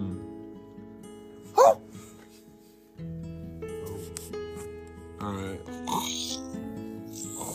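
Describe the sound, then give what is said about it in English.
A person mimics a dog with a loud, sharp bark-like yelp, then a few rougher barking vocal bursts later, over a steady humming tonal background. “That's your dog sound?”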